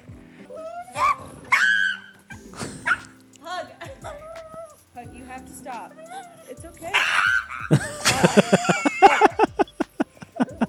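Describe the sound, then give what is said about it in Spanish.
A small pug whimpers and whines in high, wavering cries while getting its nails clipped, then breaks into a rapid string of sharp, distressed yelps near the end, loudly. “Para los que no lo pudieron ver, es un perrito, un pug, que le van a cortar las uñas y hace ese sonido cuando se”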